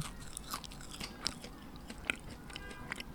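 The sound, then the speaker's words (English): Someone chews a house cricket roasted in a toaster oven: a series of sharp, dry crunches at an uneven chewing rhythm, moderately loud, with soft mouth noises between bites and no talking. “It's kind of like shrimp. But the legs get stuck between my teeth and I need some water.”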